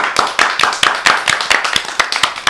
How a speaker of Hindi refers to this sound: भाई सभी टीमों के लिए जोरदार तालियां और सभी का धन्यवाद। Thank you professor Raman, professor Raman के लिए जोरदार तालियां बजा दीजिए।